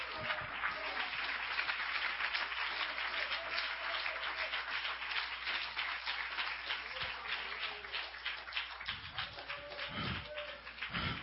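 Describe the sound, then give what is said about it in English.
A large crowd at a sermon claps hands vigorously and continuously with all their might, a dense, steady roar of applause for the whole stretch, with faint voices calling out beneath it. “Clap your hands with all your might.”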